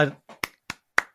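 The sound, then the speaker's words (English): Three slow, crisp hand claps, evenly spaced, following a brief snatch of voice at the start, applauding a suggestion. “I have to applaud that.”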